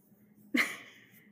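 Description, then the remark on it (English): A single sudden, loud exhale blasts close into the microphone, a rushing breath that fades over about a second against a faint low hum, with no talking. “Your breathing is much louder than your actual talk.”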